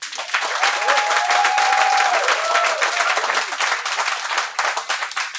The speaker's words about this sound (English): So I'd like to do this very unscientifically using the applause meter. So to those of you who would say yes to the question, was democracy threatened by January 6th existentially? If you believe the answer is yes, could you please applaud?